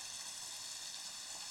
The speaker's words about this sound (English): Copperas Creek is flowing over a nice sharp rock cliff, and behind the falls is a big overhang, making a nice acoustic shell for us to read poems under.